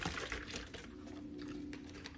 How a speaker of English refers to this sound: I'm pouring more drink for myself. A little more drink in my cup. Pour it up.